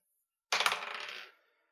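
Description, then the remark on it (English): Dice rolled for a stealth check clatter across a hard tabletop in a quick burst of bright, rattling clicks that tumble and fade over under a second, with no voices. “Okay, roll another stealth check.”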